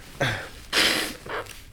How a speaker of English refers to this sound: I'm gonna blow my nose.